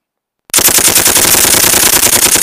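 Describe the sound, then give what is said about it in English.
A gunfire sound effect: rapid, continuous automatic fire bursts in after half a second of silence, a loud dense rattle of overlapping shots like three assault rifles firing at once without pause. “So it was like 3 assault rifles.”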